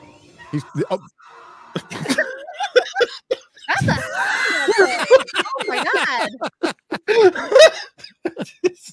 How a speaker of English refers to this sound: It was not a CGI scream.